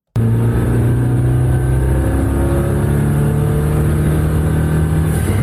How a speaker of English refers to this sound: 5.9-liter twin-turbo V8 that redlines at 8,800 RPM